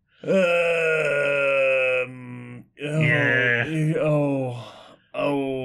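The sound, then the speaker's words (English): Loud, drawn-out screaming wails from a voice: a steady two-second cry, then a longer wavering one that bends in pitch, and a third starting at the end, with short gaps between them. “Prolonged sounds of screaming.”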